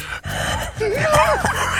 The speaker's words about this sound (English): Oh, can you hear the heavy breathing? He's back in front of his microphone.